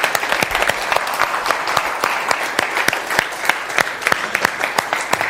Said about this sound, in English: Let's give a round of applause to these three, first of all, by the way.